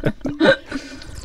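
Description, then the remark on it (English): Someone makes a bong-like bubbling using water in their mouth: a short string of wet, gurgling bursts, fairly loud at first and then trailing into a softer, uneven burble. “God, really sounds like what I picture a bong to sound like.”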